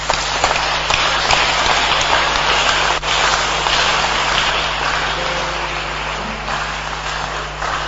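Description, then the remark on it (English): An audience claps for Jesus steadily for several seconds, a dense, even crackle of many hands that stays loud throughout with no voices over it. “Clap for Jesus.”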